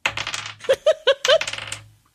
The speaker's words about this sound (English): Roll the dice. Roll the dice.